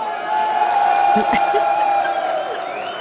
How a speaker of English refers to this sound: Let me give you a cheer, too.